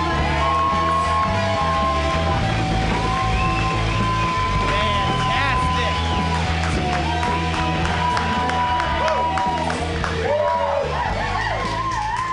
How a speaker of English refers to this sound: Guys, our last comic of the evening. I want all your remaining applause power right now for Clay Newman.